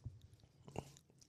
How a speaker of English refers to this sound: I waterfalled it. I know, but I don't care about that. It's just olive oil.